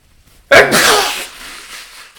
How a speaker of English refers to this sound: I gotta sneeze.